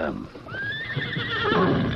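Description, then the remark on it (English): A horse lets out a single loud whinny, a high wavering neigh that climbs and then shakes downward, heard over a busy, noisy outdoor background. “Get back to the horses.”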